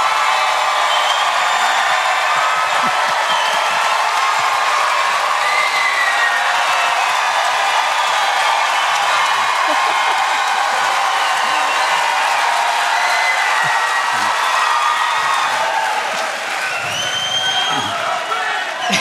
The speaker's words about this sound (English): Big clap in 3, 2, 1.